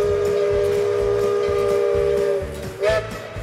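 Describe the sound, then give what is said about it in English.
A steam locomotive sounds a long, loud whistle blast, then a short second toot, over the steady rhythmic chuffing of the engine. “the trains are what makes Tweetsie Railroad special. That's what we're built around, the steam locomotives.”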